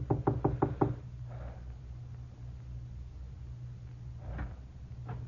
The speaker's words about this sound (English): I made sure no one was following me and knocked on the door.